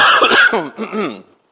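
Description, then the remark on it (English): A loud cough bursts out, followed by a rough, voiced hacking that trails off after about a second and a half. No one speaks. “I got a cough candy.”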